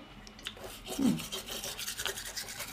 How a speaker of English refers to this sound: Oh, we're brushing our tongue now.